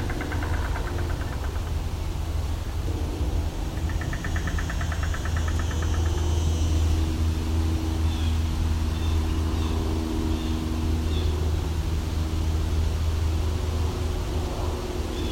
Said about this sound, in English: Unfortunately, a lot of noise here. Just had a train go by, now there's an airplane. Seem to be some loud cars too.